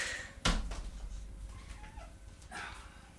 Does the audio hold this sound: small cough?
no